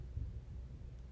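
A low, rolling rumble of a trash can being wheeled in, steady and fairly quiet, heard alone with no talking.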